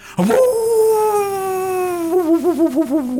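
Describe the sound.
A single long, loud howl in imitation of a wolf, gliding slowly downward before breaking into a wavering, warbling tail; it is most likely a human voice.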